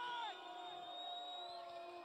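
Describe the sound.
A crowd cheers and shouts loudly for a competitor after a round of a contest, in a sustained roar, with high whoops and whistles riding over a dense wash of voices that fades slightly after the opening burst.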